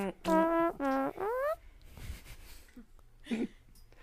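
Three loud, buzzy notes from a home living-room organ with a flatulent, fart-like tone, the last one sliding upward in pitch, followed by quieter background rustling and a brief muffled sound.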